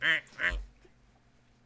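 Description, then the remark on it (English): A person imitates a duck, giving two loud, nasal quacks in quick succession, followed by a brief low thump and quiet background sound. “just quacked like a duck.”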